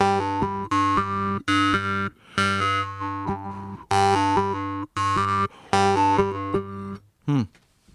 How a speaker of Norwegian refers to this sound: Og den har du også på munnharpe, så et annet veldig utfordrende moment med å lære seg munnharpe å lære å binde toner, ikke sant? Slå ett slag. Men spille mer enn en tone.